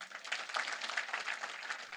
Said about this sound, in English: And that was one of her biggest applause lines.